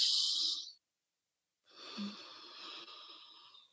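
A short, sharp nasal sniff of breath, a brief silence, then a longer, steady breath drawn through the nose as a breathing exercise, fairly loud with an airy, slightly wheezy hiss and no talking.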